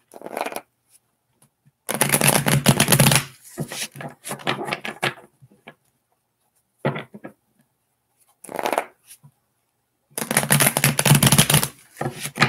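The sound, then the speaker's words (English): Tarot cards are shuffled in several bursts of dense, crisp riffling, with two long riffles framing shorter flutters and quiet gaps, fairly loud with no talking. “Okay, you have two more shuffles”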